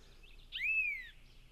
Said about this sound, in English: And again, that's the yellow-throated vireo. Let's listen to that song one more time, if we could. You can hear that burry, buzzy tone I mentioned. So not a clear whistle, it's just got a bit of a zzz to it. Zzz, zzz.